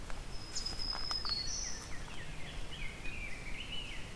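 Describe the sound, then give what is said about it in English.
Faint forest birdsong: a high, thin wavering black-throated green warbler phrase early on, then a softer slurred whistle of an eastern wood-pewee, both over a steady outdoor hiss with no talking. “I'm hearing black-throated green warbler, eastern woodpewee.”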